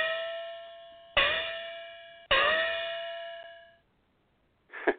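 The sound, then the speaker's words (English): A metallic gong is struck three times in succession, each hit ringing out with bright, shimmering overtones that slowly fade, then falls silent before a fourth strike begins at the very end. “the gong noise, which one of the most annoying audios we've ever had, was first used in season 7.”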